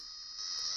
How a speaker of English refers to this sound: Can you play this YouTube video? I just want everyone to hear these sounds. I have no fun facts. I just need people to hear what frogs sound like because it's not what I thought frogs sounded like.